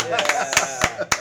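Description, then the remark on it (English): A small audience claps sparsely, five or so sharp claps at an uneven rhythm, with a voice sounding faintly underneath. “You gotta clap, guys.”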